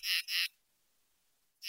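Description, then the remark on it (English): Two loud, buzzy insect chirps of a katydid in quick succession, harsh and high-pitched, followed by a pause of quiet before a third chirp begins at the end. “For many of us, the staccato notes of a katydid might conjure up memories of a warm summer night.”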